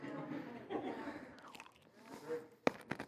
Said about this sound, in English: The crunching sound in the microphone.